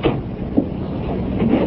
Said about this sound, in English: Oh, you used the door this time, Helmut. What happened? The passageway blocked?